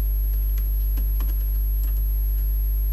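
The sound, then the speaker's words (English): Rapid, irregular clicks of fingers typing on a computer keyboard, with a steady low electrical hum underneath and no voices. “Why are you typing here?”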